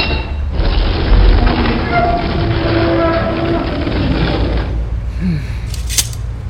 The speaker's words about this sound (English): With a look of unadulterated hate, the vampire warrior reached out and grabbed a stone lever. With little effort, she pushed it down, and the great doors swung open before me.